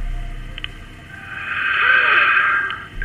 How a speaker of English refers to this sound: In the center, a cassette player emitted the sound of static for an uncomfortable stretch of time.